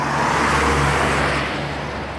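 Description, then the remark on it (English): A car drives by with a steady low engine drone. Part of its exhaust system hangs down and scrapes the bottom, making a harsh, continuous rasp that stays loud and even, then eases slightly toward the end. No talking. “Guy scraped on the bottom because he's got some part of his exhaust system hanging down.”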